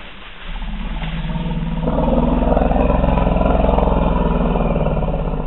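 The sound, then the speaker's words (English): A deep, throbbing elephant call rumbles loudly, swelling after a brief quiet start and holding steady for several seconds with a rough, engine-like growl. “Peter was listening for elephants, and specifically for that different kind of elephant sound.”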